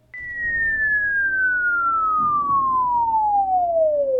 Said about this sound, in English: this has to be a whistle. It has to be a whistle.